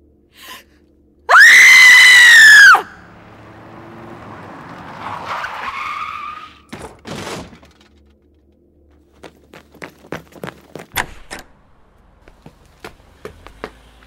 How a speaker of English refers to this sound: That car almost hit that kid, but he doesn't look hurt. Shouldn't be biking in all black at night.